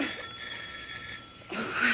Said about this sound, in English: You can't answer the doorbell, can you, Henry? Huh?